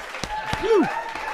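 Audience applause with a few sharp, distinct claps over a steady crowd murmur, and a rising-then-falling whoop cutting through at moderate volume.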